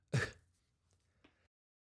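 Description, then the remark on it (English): A single sharp cough bursts out at the start, followed by a couple of faint, soft throat sounds and then quiet. “Excuse me, I had a cough there.”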